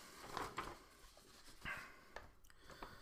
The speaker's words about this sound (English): Now the dogs are barking again. Damn it.